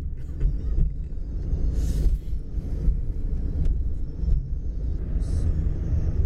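A bus passes close by, almost hitting someone. A heavy low rumble and steady engine drone mix with traffic noise that swells and fades over several seconds, with no talking.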